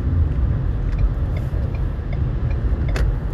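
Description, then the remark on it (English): Steady low rumble of road noise inside a moving car, a constant engine and tire drone filling the cabin with a few faint clicks and a brief higher hiss near the end. “I always do these little podcast rants in my car because I feel very, I feel like this is the best place for me to just keep ranting and get my my thoughts out.”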